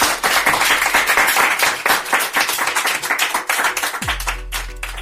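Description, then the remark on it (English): A crowd applauds the speakers at an event with dense, steady clapping for about four seconds, then a low sustained musical tone swells in as the clapping carries on more faintly. “A round of applause for everybody.”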